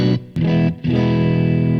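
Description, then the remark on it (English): A loud electric guitar played through input one of a tube combo amp with reverb, striking three sustained, gritty chords separated by short breaks, the last one ringing on. No one speaks. “I can hear the reverb now.”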